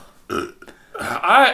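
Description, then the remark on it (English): A loud, drawn-out burp, rising in two guttural bursts with a rough, tonal rumble at the end. No one is speaking. “No, for that burping. Awful burp.”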